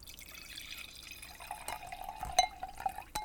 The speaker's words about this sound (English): Cassie's going to refill her glass.